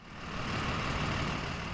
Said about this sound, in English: Students are arriving on buses, in cars, and on foot at Walker Elementary in the Hazelwood School District.